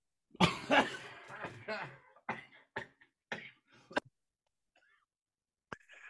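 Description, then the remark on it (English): A fit of harsh coughing: a few loud, ragged bursts up front, then a string of shorter, scattered coughs that taper off, ending with a brief throaty rasp. “And he is in a fit of apoplexy. Cough button.”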